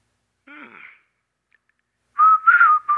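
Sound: whistling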